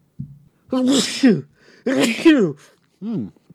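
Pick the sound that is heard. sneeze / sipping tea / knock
sneeze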